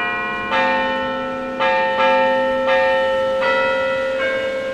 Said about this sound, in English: Obviously, the sound of church bells. You've probably heard bells that sound a lot like this, and you've probably ignored them.